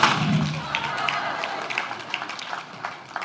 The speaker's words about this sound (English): Here's what we know. Here's what we know with the confetti cannons.